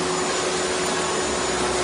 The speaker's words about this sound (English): Your husband loves to vacuum. I know. He does. He really loves to vacuum.